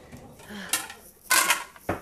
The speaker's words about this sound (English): So I'm going to empty my dishwasher.